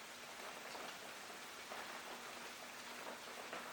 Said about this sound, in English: which is, you know, permeated by the rain, which is sinking into the ground as we allow our bodies to sink down.